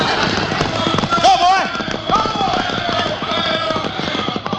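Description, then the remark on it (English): Horses freed from a wagon gallop away in a dense, steady clatter of hoofbeats, loud throughout, with a brief vocal cry rising over the pounding near the start. “They got the horses off the wagon.”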